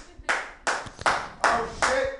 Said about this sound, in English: No one else gets to have applause during my set except for me.